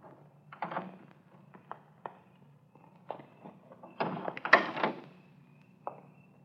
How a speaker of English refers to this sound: We stopped around the corner from the filling station. Easy on the door when you get out.